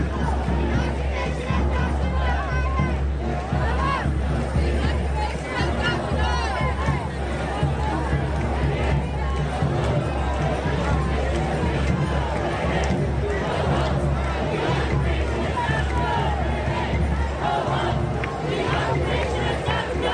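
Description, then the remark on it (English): A large pro-Palestinian protest crowd in America chanting and shouting together, a dense, steady wall of many voices that stays loud and unbroken for the whole stretch, with no quiet gaps. “Palestine will be free. I don't know if they're saying that in this video or not, but that's what they're always chanting.”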